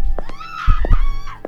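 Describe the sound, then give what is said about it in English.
A faint, drawn-out scream drifts in from the direction of a room in a building with a front desk, its pitch rising and then falling, while dull low thuds, like hurried footsteps, are heard. “a faint scream came from the direction of Hazel's room”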